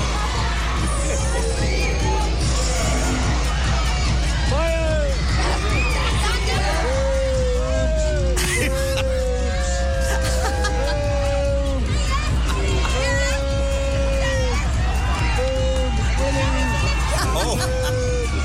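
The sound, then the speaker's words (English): A lively pantomime crowd, many children shouting and whooping together in bursts of excited calls over a constant hubbub of chatter, with occasional cheers rising above the din, as a pirate ship is pushed through the audience and they shout at Boy George. “And the kids going, I think we need to shout boobs, man.”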